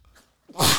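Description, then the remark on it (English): A single sharp, loud sneeze, bursting out abruptly after a brief quiet moment and a faint intake of breath. No one speaks. “God bless you.”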